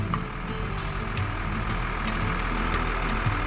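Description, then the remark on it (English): Steady low engine rumble of a bus driving through the night, a continuous droning hum with faint rattles and clicks, heard from inside the bus with no one speaking. “Sleeping on a moving bus is difficult, but driving through the night was critical.”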